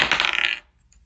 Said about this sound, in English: Roll damn dice. Okay, here we go.